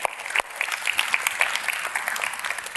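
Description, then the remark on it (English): An audience applauding and cheering, a dense, steady wash of clapping with scattered higher whoops rising above it, sustained at an even loudness throughout. “Yeah, let's cheer for that.”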